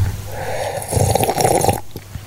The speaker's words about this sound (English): I'm going to sip a drink and you're going to try and guess what I'm drinking.